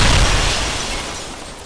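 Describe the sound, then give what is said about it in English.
A helicopter explosion sound effect, Noah Langley's helicopter exploding on impact as a flying figure crashes headfirst into it: one loud, booming blast with a heavy low rumble that slowly trails off into a broad hissing roar. No voices are heard. “And we see the beautiful arc of the Swamp Cabbage Bionic Man as he flies up into the sky, headfirst into Noah Langley's helicopter, which explodes on impact.”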